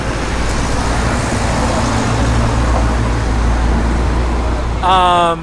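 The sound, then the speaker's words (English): A truck rumbles loudly down the street, its deep, steady engine roar and road noise filling the whole clip, with a short tonal sound breaking through at the very end. “The truck just went down the street.”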